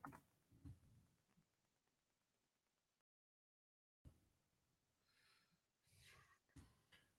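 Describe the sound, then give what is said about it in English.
Soft, irregular clicking of keys on a computer keyboard, fairly quiet, breaking off for a moment of silence before the tapping resumes in brief bursts. “Let me finish typing this.”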